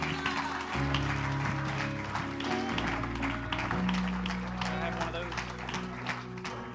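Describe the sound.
An audience erupts in shouting and steady hand clapping, a dense, continuous wash of claps and raised voices over sustained low organ-like tones.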